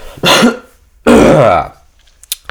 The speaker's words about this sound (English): You know, I was raised, let me clear my throat.